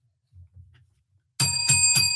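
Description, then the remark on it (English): After a quiet moment with faint low rumbling, a bell rings out loudly in three quick, evenly spaced strikes, its bright metallic tones sustaining between hits. “Oh, there's the bell.”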